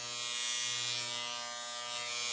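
A phone buzzes in one continuous, steady electric drone with a low hum and a harsh, raspy rattle on top. It holds at an even level for a couple of seconds with no talking.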